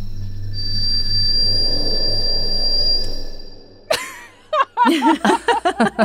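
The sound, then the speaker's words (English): A mouse howls into the sky after eating a scorpion: one long, thin, high-pitched whistle held steady for about three seconds over a low hum. It fades out, and a burst of chuckling laughter follows. “That was his tiny scream. Yeah, they howl.”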